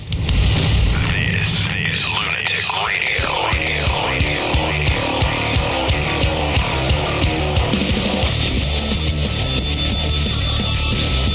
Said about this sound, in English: I love the sound of the bell.